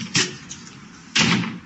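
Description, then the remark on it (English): A door opens, triggered by a bracelet worn on the wrist, with two short, sharp mechanical bursts about a second apart, moderately loud, with quiet background hum between them and no one talking. “And that opens the door?”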